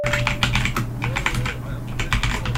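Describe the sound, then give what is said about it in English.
Rapid, loud clacking of keys on a computer keyboard as someone looks things up, a dense irregular burst of keystrokes over a low steady hum, with no talking. “you're gonna have to hear my like loud ass typing.”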